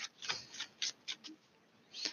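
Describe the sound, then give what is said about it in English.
A Taramucha tarot deck being shuffled during a card reading: a series of soft, papery rustles and quick riffling bursts in an uneven rhythm, fairly quiet, with no voices. “Ignore me, but I'm shuffling the Taramucha deck.”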